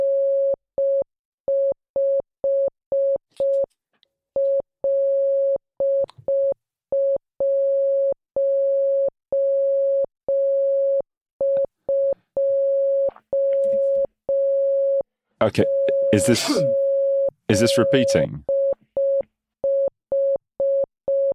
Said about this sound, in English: Because that sounds very much like Morse code. Mm-hmm. Very much so. Yeah. I wrote down loads of beeps.